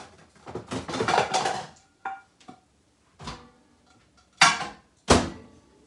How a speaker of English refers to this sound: All right, so I'm gonna put this one in the microwave, get a new plate.